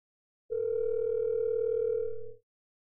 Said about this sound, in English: Put on speaker. Oh, it's regularly ringing?